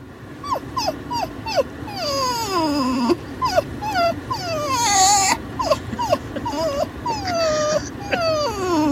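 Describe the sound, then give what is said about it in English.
A person imitates a crying dog with a steady run of high, whiny cries that slide downward, some short yips and some drawn-out whines, fairly loud with no talking. “I make a crying dog.”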